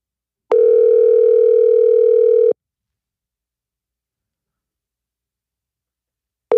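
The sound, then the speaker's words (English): A phone ringback tone with a U.S.-style ring sounds clearly with no one talking: a steady two-second burst, about four seconds of silence, then the next ring begins. “It's ringing like if he's in the U.S.”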